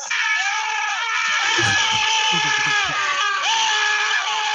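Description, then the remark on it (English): A loud, sustained high-pitched scream from a football broadcast on BBC's Match of the Day holds for several seconds with a wavering pitch, steady and strained throughout, with faint low rumbling beneath it. “But yeah, they put the scream on.”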